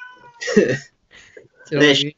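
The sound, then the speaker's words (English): A female cat shut in a room meows twice, loud, each call a drawn-out, strained wail separated by a brief quiet pause with a faint murmur between them. “I think some of her racial language there in those meows was a bit distasteful.”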